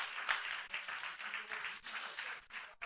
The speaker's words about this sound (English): Let's clap our hands and thank the Lord for his riches.